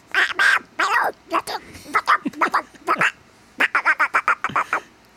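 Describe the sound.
A voice imitates Donald Duck, producing a rapid series of raspy, squawking quack-like bursts in quick succession, loud, with short pauses between clusters.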